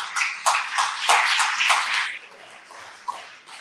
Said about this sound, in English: Who believes that? I'm going to pick up a round of applause here.